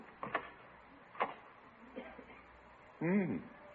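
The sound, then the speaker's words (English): A door opens: a few sharp clicks and knocks from the latch, then a loud, wavering creak of the hinge swinging, without any talking. “I think I'll take a peek out the door.”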